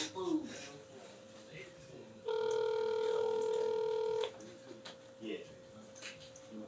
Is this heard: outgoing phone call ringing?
yes